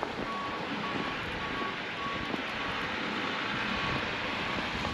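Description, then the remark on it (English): A heavy snowplow truck rumbles steadily with a broad engine roar during a snowstorm, coming down a street not yet plowed, while a reversing alarm beeps in a regular repeating pattern, about one beep every half second. “That's a plow, and it might be coming down the street, so I need to watch out.”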